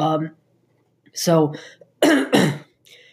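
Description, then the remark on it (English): A few harsh coughs and throat-clearing sounds from a person with seasonal allergies, two sharp bursts in quick succession near the end, with brief voiced grunts before them and quiet pauses between. “I have seasonal allergies, unfortunately, so if you hear me cough every once in a while, that's why.”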